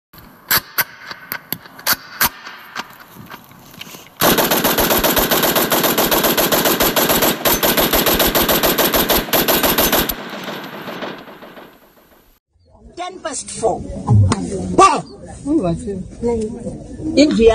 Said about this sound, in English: Stop shooting up my house.